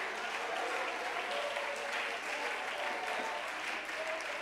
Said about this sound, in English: If you believe that, you ought to clap your hands and give God a shout of faith.